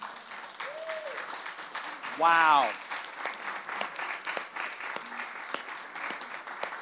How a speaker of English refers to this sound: Come on, let's applaud the warriors.